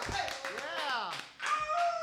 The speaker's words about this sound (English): Hey, welcome to the greatest songs ever, brought to you by …. About a round of applause for everybody here this evening.